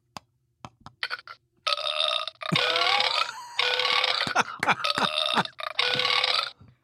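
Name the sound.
burp sound effect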